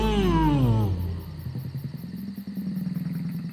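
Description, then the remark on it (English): A loud roar from the largest of a pride of lion-like creatures, one with a big, colorful ring around its neck, by their lair at a moonstone mountain in a twinkling desert as a vehicle drives by. A deep, falling bellow trails off into a rough, pulsing growl lasting a few more seconds. “The largest Satalion had a big, colorful ring around its neck. It let out a large roar as we drove by.”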